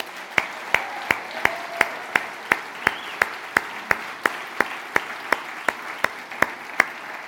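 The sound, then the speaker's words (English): An audience applauds two men, sharp claps landing in a steady, even beat over a dense wash of crowd clapping, about twenty claps across the stretch with no talking. “Can we applaud these two men?”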